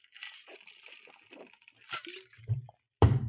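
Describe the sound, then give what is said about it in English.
Crackly rustling of someone taking a water break, handling a glass and drinking water, with small clinks and soft liquid sounds, ending in a louder thud as the glass is set down. “Anyway, I'm going to have a little more water.”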